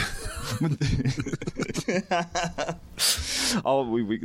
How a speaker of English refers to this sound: The snore effect is in full effect there. The thought spiral snore.